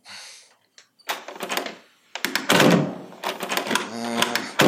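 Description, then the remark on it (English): Doors being tried and opened in search of an exit: a quick series of loud clunks, rattling handles and latch clicks that come in uneven bursts, with a brief soft hiss at the start. “Check the doors.”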